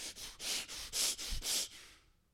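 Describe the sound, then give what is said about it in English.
A voice imitates hard, heavy breathing: about seven quick, rhythmic panting breaths, forceful, in and out, trailing off at the end. No words are spoken. “Passion, but this word thumos actually means passion as if breathing hard.”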